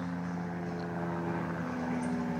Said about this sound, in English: Low flying helicopter coming in.